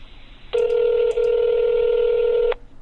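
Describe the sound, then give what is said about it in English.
A telephone dialing tone sounds as a loud, steady electronic beep held for about two seconds, with one brief break partway through. No one speaks. “So, I don't know why it wouldn't dial before.”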